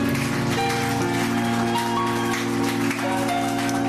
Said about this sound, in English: Give Jesus a mighty hand clap, everyone.